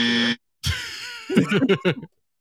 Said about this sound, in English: Last one. And it's not the last one because I have no more scores. It's the last one because of the buzzer.